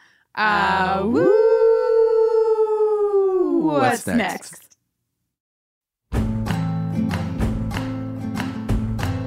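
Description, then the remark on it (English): Several human voices howl together like wolves, sliding upward and holding one long, loud note for about four seconds before breaking off. After a short silence, music starts. “if he would howl out with us for this very special episode.”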